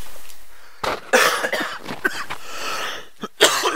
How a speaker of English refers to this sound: Forgive me, I have a cough here that I'm trying to hold back